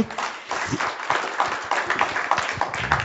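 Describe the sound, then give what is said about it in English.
A crowd applauds steadily, a dense patter of many hands clapping at once, with a few sharper individual claps standing out over the wash of sound and no one speaking. “So one more hand of applause, please.”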